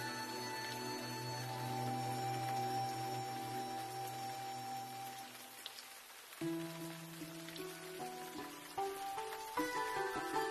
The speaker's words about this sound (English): But it's raining now, as it sometimes does in Mizoram, so let's go under the shelter.